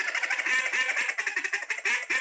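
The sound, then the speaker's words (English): A handheld duck call blows a run of raspy, nasal quacks in quick succession, fairly loud, each made by applying pressure and stopping the note, with short choppy notes and no talking. “So if you just start applying pressure, and then you just stop the note to make a duck. Then you can do two ducks, three ducks.”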